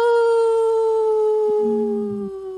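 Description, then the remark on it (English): A person imitates a wolf howl on Native Roots Radio, a single loud, sustained tonal cry that slowly falls in pitch and carries clear harmonics, with a faint lower hum briefly underneath near the end. “This portion of the show is supported by Howling for Wolves, protecting wolves for future generations.”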